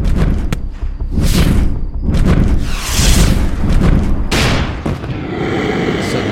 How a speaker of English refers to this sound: Fireball lit the field aglow and knocked the large creature back. Another explosion and I flew backwards, tumbling over shrubs and rocks.